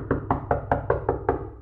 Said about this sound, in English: There's a knock on the door of the room Arl's in.